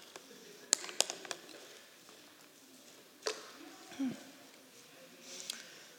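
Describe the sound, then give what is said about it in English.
A few sharp little clicks, then a soft gulping swallow. Someone sipping water, all faint and spaced out over otherwise quiet background. “So I'll let you open up to that while I take a sip of water.”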